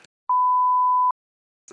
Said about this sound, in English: Just like, yeah, the jarring little beeps that just take us off piste. I remember those. I remember those today. It was a little bit like you get into a topic and then suddenly I just hear a beep